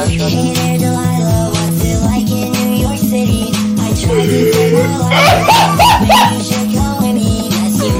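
dog whimpering and yipping

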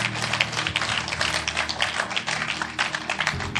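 audience clapping hands

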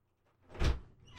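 door being opened

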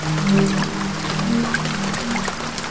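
rain falling outside

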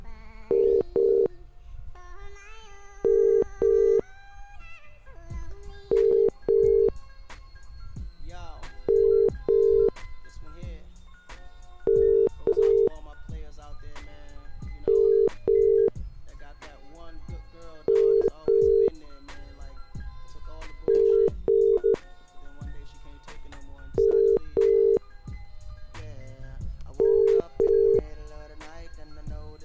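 telephone ringing unanswered

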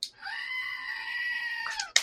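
goat scream sound effect

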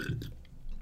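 burp

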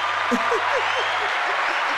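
applause

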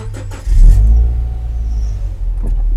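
car engine revving

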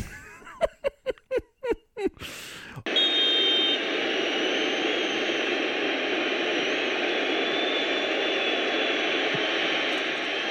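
jet airplane engine

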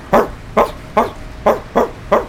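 small dog barking

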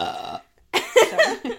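loud burp

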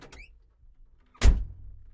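door being pushed open

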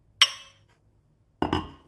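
glasses clinking

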